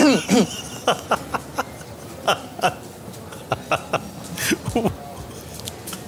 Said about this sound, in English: Oh, my gosh, it sounds like you need some water to clear your throat. Let me get you a glass.